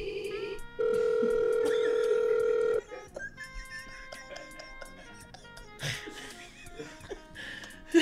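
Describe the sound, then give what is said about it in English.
A loud, steady telephone dial tone drones for about two seconds, then cuts off, leaving softer whispery voices and light laughter with scattered tonal bleeps. “Hello? Who's on the phone?”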